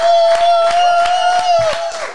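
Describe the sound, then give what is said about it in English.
A crowd does a slow clap, clapping together in a steady, even rhythm, about six sharp claps over two seconds, over a sustained high-pitched note. “Let's get the slow clap.”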